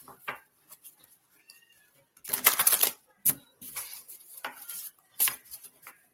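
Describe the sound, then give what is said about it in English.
A deck of cards being shuffled before a card is pulled for someone: a dense, crackling riffle burst lasting under a second, followed by several shorter papery flicks and taps, with no talking. “I have to shuffle them. Whoops, let's just shuffle them.”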